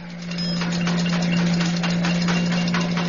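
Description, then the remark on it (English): A vehicle engine runs steadily as the vehicle pulls up on the left, with a strong low hum and a faint rattling, ticking texture on top, swelling slightly louder after the start and holding level with no voices; the rattle comes from some mechanical part other than the brakes. “Must be some other part of the mechanical contrivance of the vehicle.”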